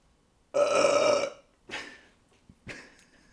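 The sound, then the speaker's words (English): A loud, drawn-out burp rumbles for about a second, followed by two shorter, softer belching gulps after brief pauses. “That's a 45-minute burp.”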